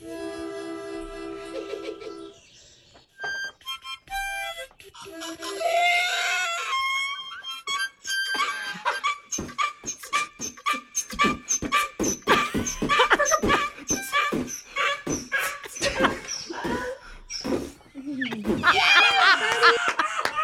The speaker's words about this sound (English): Let's hear the sound of a woman playing harmonica, and then her musical donkey joins in